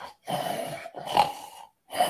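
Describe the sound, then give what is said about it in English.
A person imitates the snorting and heavy breathing of an unseen creature outside a tent: three rough, breathy bursts in close succession, loud, with no other talk. “Dude, the thing was snorting.”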